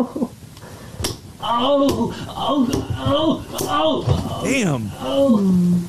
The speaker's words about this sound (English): Oh, she's yanking the balls as hard as she can down through the hole. And then she also starts punching them. Well, then don't be banging on my board.